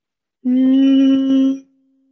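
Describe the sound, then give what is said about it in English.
A person hums a single steady tone on the exhale, held evenly for about a second at moderate loudness, then fading into a faint lingering note. No speech accompanies it. “Doing that on the exhale with the out breath, that humming.”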